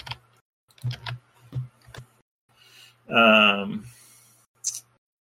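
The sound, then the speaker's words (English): A handful of sharp, irregular key clicks from typing on a computer keyboard, fairly clear, with a short voiced sound breaking in midway and one more click near the end. “Slow down, I'm typing.”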